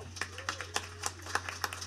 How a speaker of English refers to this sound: I have a new comic book called Apocalypse Boulevard. Feel free to clap for that.